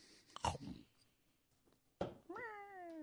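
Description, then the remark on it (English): A person imitates a cat meowing, fairly loud: a short vocal burst, a pause, then a drawn-out, tonal meow that slides downward in pitch. “Hopefully squeak, he doesn't squeak, run into squeak, a cat before he can find someone that will turn him back. Meow.”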